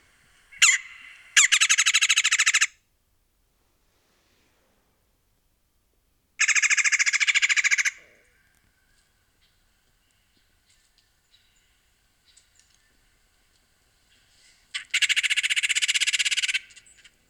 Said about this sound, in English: So here is a red-bellied woodpecker. And then here's another common red-bellied woodpecker call that you will hear.